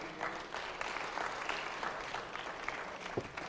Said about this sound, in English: Come on, clap your hand. You got it.